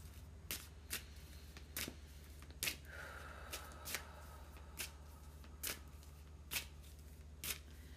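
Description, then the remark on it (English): Tarot cards being shuffled, a series of sharp papery riffles and taps at irregular intervals over a steady low hum, with no voices. “What I clearly hear as I shuffle cards.”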